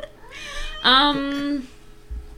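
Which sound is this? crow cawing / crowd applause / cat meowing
cat meowing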